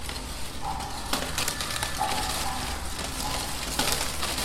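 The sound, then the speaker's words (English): Steady, dense crackling and rustling of paper from a spinning rose-shaped sculpture made of recycled bakery bags, a work by Adela Konechna at an exhibition, its spinning speed set by a knob, with sharper pops now and then and no voices. “Yes, and then you can touch the knob and change the speed of the of the crackling.”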